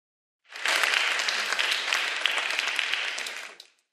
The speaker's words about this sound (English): Give those folks a round of applause.